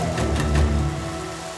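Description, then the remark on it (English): A sound effect of a great storm at sea around a sailing ship: steady hissing rain over a deep rumble of thunder that swells early on and then slowly eases, with no voices. “I know that it is my fault that this great storm has come upon all of us.”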